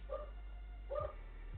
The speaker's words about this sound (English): My neighbor's dog.